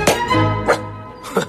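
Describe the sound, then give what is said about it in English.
A dog, Stubby, who fought in World War One, barks three times in short, sharp bursts spaced roughly half a second apart, fairly loud, with a low steady hum underneath and no talking. “How's this dog get in here?”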